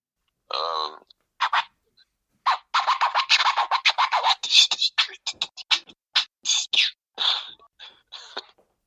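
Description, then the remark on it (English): A voice beatboxing over a phone line: a rapid run of sharp, breathy percussive hits and hissy snares in a tight rhythm, thin and band-limited, with short gaps between bursts. “Do you still beatbox now? Yeah. Can you do us a bit down the phone?”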